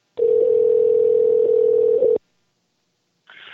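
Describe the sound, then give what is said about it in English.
An outgoing phone call's ringing tone at 8:23 p.m. on October 13th: one steady, loud two-second buzz, a pause of silence, then the next ring just beginning. No one speaks. “Let's see if we can get a hold of him for the first time today.”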